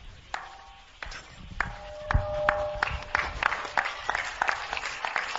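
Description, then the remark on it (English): Hand clapping for Daniel during a telling of the story of Daniel and the lions, starting as a few scattered claps and building into quicker, uneven bursts, with some faint ringing tones mixed in. “Are you clapping for Daniel?”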